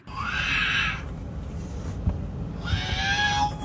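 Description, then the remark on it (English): A baby on a plane lets out two long, high-pitched warbling squeals separated by a short pause, with a steady low engine-like rumble running underneath throughout. “It is a baby on a plane.”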